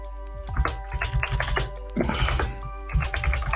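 Rapid, energetic typing on a computer keyboard, a dense flurry of clicking keystrokes with a few heavier thunks, close and fairly loud, with a steady hum beneath and no talking.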